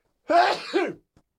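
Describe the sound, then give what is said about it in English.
A single loud sneeze into a microphone bursts out with a sharp breathy onset and a trailing exhale, followed by a tiny click and then silence. “I just sneezed into the mic.”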